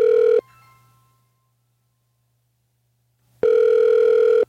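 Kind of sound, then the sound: signal or alarm, telephone ringing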